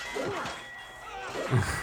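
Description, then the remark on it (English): A film sound effect, from a movie released on April 10th and watched in low resolution on YouTube, of a sword striking a man's head: one sharp, hard whack lands near the end, preceded by brief muffled scuffling and voice-like cries. “Kind of low res, of course, on YouTube, but you could still get the effect that he got hit in the head with a sword.”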